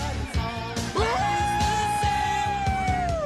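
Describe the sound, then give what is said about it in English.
A loud, drawn-out scream from a player spiking the ball in a volleyball scene of a Top Gun film bursts out and holds a strained, sustained pitch for a couple of seconds, piercing over a steady pulsing background. “somebody does a blood curdling scream after spiking the ball”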